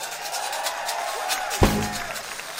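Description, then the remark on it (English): A crowd applauds and cheers in a steady, dense wash of clapping and voices, with a single heavy thump cutting through partway. “Pick it up one more time for …. One more time? One more time. Get your hands together.”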